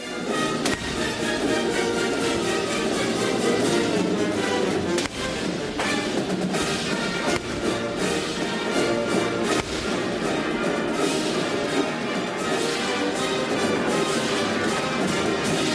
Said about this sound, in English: Perform in the climactic event of the biggest Independence Day celebration in the country, the Boston Pops 4th of July Fireworks Spectacular, in the hatch shell with howitzers.